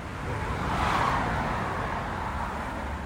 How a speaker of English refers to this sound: Cars, trucks, buses, motorcycles, all speeding by on Northwest 27th Avenue, creating the constant rumble of traffic, punctuated by the occasional semi-truck passing.